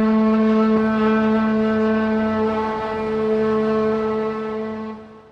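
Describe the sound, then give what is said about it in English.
The Pacific Lumber company's work whistle in the company town of Scotia sounds one long, loud, unbroken blast calling employees to work, a steady reedy tone rich in overtones that holds for about five seconds before tapering off. No one speaks. “Pacific Lumber still owns every building here and whistles its employees to work three times a day.”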